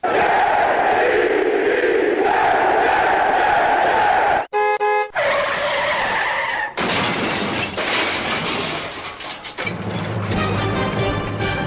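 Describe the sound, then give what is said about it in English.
A loud, chaotic car-crash sound effect with skidding: dense roaring noise, a brief blaring horn, abrupt cuts and crashing, shattering bursts that run continuously for about twelve seconds with no talking. “That was the one that Greg privately prepared with you, and it sounded like a car crash.”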